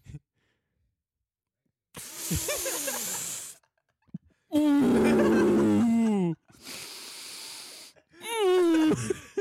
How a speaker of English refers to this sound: I'll do like meditation, concentrated breathing for about 5 to 10 minutes, depending on.